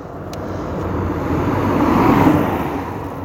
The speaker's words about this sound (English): Oi! Brambles, there's a car coming. Oh, it's all going on. I'll let the car go past before I get out of the ditch. Might stop and see, wonder if I'm all right.